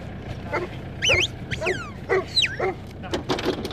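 Excited farm dogs, including Ebby, a huntaway, and Rex, bark and yelp as they are let out of their kennels at Glenmark Springs property, in a rapid, overlapping run of high, sharp calls with whiny rising and falling tones, over a steady outdoor rumble.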